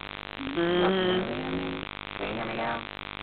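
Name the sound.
buzzing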